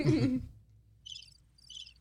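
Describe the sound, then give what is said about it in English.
Two short bursts of high, rapidly pulsing cricket chirps, fairly quiet, following a brief muffled rumble at the start, with faint low background hum beneath. “Those crickets are so sad.”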